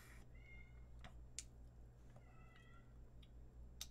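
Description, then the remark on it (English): A cat meows twice, fairly quietly, with a pause between the calls, over a steady low hum and a few sharp clicks. No one speaks. “Oh my gosh, this cat just drives me crazy.”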